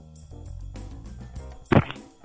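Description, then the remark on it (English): A phone smacks against skin once, a sharp slap that stands out loudly over a low, steady background of tonal sound. “Slap your ass with your phone.”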